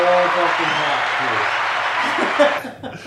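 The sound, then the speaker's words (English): A loud applause sound effect, dense steady clapping from a crowd with some faint laughter mixed in, lasting a couple of seconds before cutting off abruptly. “That's a clap for that man.”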